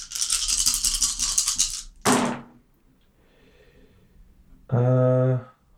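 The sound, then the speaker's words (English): Dice rattle loudly in a cupped hand for about two seconds, then clatter onto a hard surface with a sharp burst, landing a 10 on a hunger die and two nines. After a short quiet pause, a brief vocal exclamation follows. “I have too many dice now. I have to get these out.”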